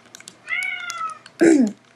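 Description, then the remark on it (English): A female cat meows twice: a thin, high, drawn-out mew followed by a shorter, louder, lower meow. No one speaks, and faint clicks sit in the quiet background. “Just letting you guys know, because she's been meowing off the bat, as you can probably hear.”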